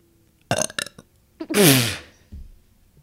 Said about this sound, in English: you can't just be burping. I'm sorry.